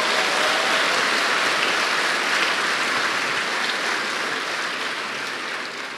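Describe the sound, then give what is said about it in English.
An audience claps their hands to Jesus in a dense, steady wash of applause that holds strong for several seconds, then begins to taper slightly toward the end. No voices stand out. “Come on, clap your hands to Jesus and say.”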